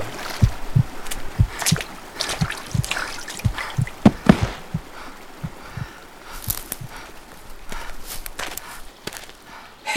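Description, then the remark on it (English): Irregular wet footsteps squelch along as a person climbs from a river, while water drips and trickles steadily, with no voices, just the soggy steps and splashing drops. “I saw you climb from the river and came to see if you were all right.”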